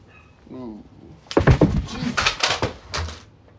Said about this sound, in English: I apologize to everyone listening. I just fell over in my chair.